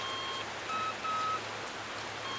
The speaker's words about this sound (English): I think the rain is kind of blocking it.